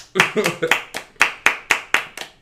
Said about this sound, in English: Clap it up